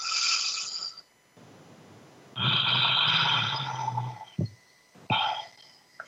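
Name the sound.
breathing in through nose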